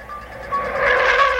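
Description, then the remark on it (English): A car engine swells as the vehicle approaches and drives past, growing louder over a second or so with a steady whining hum, no voices present. “watched the car and watched it drive by and watched it go that way.”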